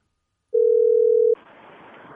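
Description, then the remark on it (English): A telephone dial tone, heard while redialing, sounds as a steady, loud, mid-pitched hum for under a second, then cuts off into a soft, even line hiss. No one speaks. “Redial, Monty. Redial. Redial.”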